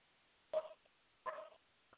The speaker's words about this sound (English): Your dog's barking. I'm meowing. Something's wrong, man. Yeah, I'm sorry. It's my dog.